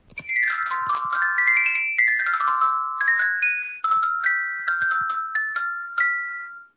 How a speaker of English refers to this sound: that's actually the ringtone of Janelle Monáe's phone